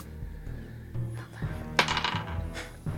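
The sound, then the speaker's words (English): A brief burst of hard, rattling clicks as dice are rolled for a check in a tabletop game, tumbling and clattering across a table and landing on 19, fairly crisp, heard over a steady low musical drone with no one speaking. “Go ahead and roll me an H check, please,”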